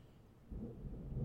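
Deep, low rumbling thunder of a thunderstorm swells in about halfway through and keeps rolling steadily, a broad muffled boom heavy in the bass with no voices.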